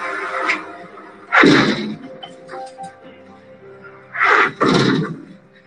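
A 25-ton steel door of a secret Cold War nuclear bunker, built deep inside a mountain at the Greenbrier Resort in southern West Virginia, swings shut with a deep, booming clank, then a quieter metallic hum and faint rattles, followed by a second pair of loud, resonant thuds as it seals.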